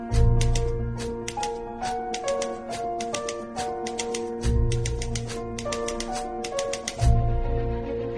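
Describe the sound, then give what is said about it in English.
Sharp typewriter clacks, used as instruments in a film score, strike in quick, uneven bursts over sustained orchestral strings and low bass swells, the mechanical taps woven into the music as part of the rhythm. “the score for Atonement, to use typewriters the way they did as part of the instruments, was really, really awesome”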